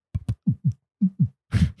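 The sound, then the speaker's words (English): A voice imitates a heartbeat with three quick pairs of low, thumping lub-dub beats, fairly loud, ending in a breathy burst of sound. “The villain from Ratatouille and Heartbeat are your top two impressions.”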